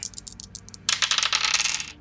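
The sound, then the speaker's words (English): Dice rolled for an ESP check rattle and tumble: a run of light, sharp clicks gives way to a dense, bright clatter that lasts about a second before settling. No one speaks. “Roll your ESP or under.”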